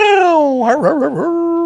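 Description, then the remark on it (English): A single drawn-out dog howl that slides downward, breaks into a wavering, whimpering warble, then settles into a steady whine, with no talking. “Doggy.”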